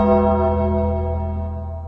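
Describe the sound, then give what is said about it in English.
A single bell rings out loudly, its bright, sustained tone slowly fading as it resonates over a couple of seconds, with no voices. “Well, you know what that bell sounds.”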